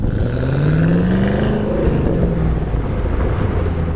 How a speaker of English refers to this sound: With the top down, you really get that great balance of supercharger whine and the active exhaust. It just really amplifies what a neat exhaust that is.